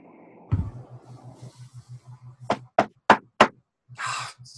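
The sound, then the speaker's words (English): Four sharp, loud knocks on a front door in quick, even succession, standing out over a low, steadily pulsing hum in the background; no one speaks. “And then suddenly you hear a tapping at the front of the door.”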